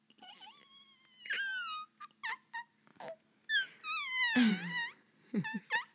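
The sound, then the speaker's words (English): A voice imitates air squeaking out of a balloon: a series of high, wavering squeals that slide up and down in pitch, broken by short breathy bursts and pauses, with no words. “Can you make a balloon noise?”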